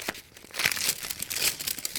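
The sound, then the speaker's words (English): Paper crinkles and rustles as a letter addressed to Sherlock Holmes is unfolded, a dry, crackly stream of small irregular crackles with a few sharper crisp snaps, fairly soft and steady, with no voices. “Here's a letter, and it's addressed to me.”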